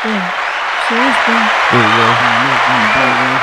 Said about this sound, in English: So I just wanted to give you guys a huge shout out and a round of applause in front of the applause button. That needs to be louder.